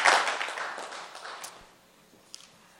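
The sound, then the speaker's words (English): A church audience gives a clap offering to the Lord as they take their seats: a dense burst of applause that starts loud and steadily fades over about two seconds, leaving a few scattered claps and a near-silent tail. “Why don't you give the Lord a clap offering, a big clap offering for the Lord as you take your seats.”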